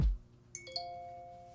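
A phone message notification chime for a message from a friend from work: three quick, bright notes in a rising run, the last one ringing out and slowly fading, with no talking over it.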